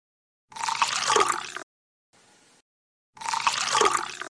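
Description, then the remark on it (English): Wine is poured into glasses in two short, splashy pours about a second each, with a faint brief trickle in the pause between them. No one speaks. “Well, I just poured some wine into these glasses because we're going to be speaking about wine today”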